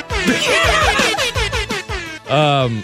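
A loud, brassy air horn blasts out a quick, bouncy synth-pop melody in short staccato notes, ending on a longer sustained tone, with no talking.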